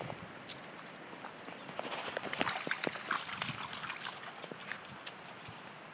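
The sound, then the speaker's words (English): Benny, a retriever, takes a sip from a small creek in a forest and tramps through shallow stream mud, with irregular wet squelching steps and soft lapping or trickling water sounds throughout, fairly quiet with a few sharper splashes. “He's tramping around in the mud.”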